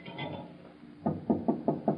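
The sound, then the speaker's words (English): A quick series of five sharp taps on a door, evenly spaced and moderately loud, following a second of low, quiet background murmur. “Well, don't stand there tapping like a woodpecker,”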